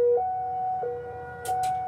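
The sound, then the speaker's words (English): A Cold War era civil defense siren in Hawaii blares during its monthly test, its tone stepping between two pitches in a steady, sustained wail, with a couple of brief hissing bursts near the end and no voices. “Actually, every month we have a Cold War era siren that blares.”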